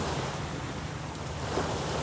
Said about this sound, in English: I'm going to be quiet as I let you listen to the sounds of the waves crashing into the sand.